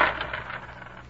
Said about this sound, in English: You dropped some coins,